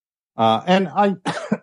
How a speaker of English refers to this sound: I have a little tickle in my throat. That's why I'm coughing all the time.